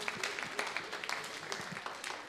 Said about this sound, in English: Okay, firstly, well done. Clap a round of applause for yourself.